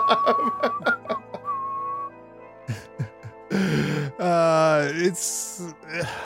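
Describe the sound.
A cheerful tune is whistled, accompanied by sharp rhythmic claps, then gives way to groaning, drawn-out vocal sounds and a brief burst of noise.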